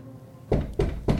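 Three dull, solid knocks on a farmhouse door at night follow a moment of quiet, evenly spaced and fairly loud, each a low wooden thud with a short ringing tail.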